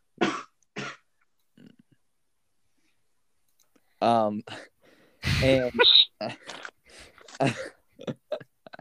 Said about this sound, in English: who is this coughing? Me, sorry.